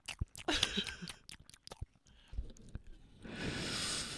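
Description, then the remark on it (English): Crunchy chewing of sausages by several people, with irregular bites and mouth clicks, ending in a steady hissy rustle; no talking. “Just another installment of us chewing.”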